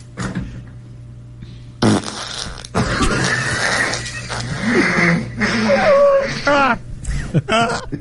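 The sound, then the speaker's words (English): A long, loud, sputtering fart runs for several seconds, breaking into buzzy, wet bursts with brief pauses, with a steady low hum underneath. “…'s Covid-19 Farts”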